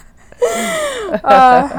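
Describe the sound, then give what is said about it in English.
A pet snores, two drawn-out wheezy breaths with a whistling, whine-like pitch, fairly loud, with no talking over them. “All right, you got, just no snoring, okay, please. Oh, just because I said that.”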